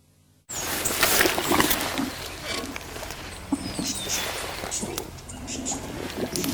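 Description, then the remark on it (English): Giant Gippsland earthworms gurgling in their burrow: a steady stream of wet, crackling squelches and sputtering bubbles that starts abruptly and carries on, with a faint whistling bird call partway through. “You may not see a giant Gippsland earthworm, but if you're lucky enough, you can hear them moving within their wet burrows.”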